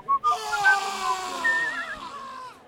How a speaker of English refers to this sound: The nurse whistles over the sound of the hospital ward and the occasional scream.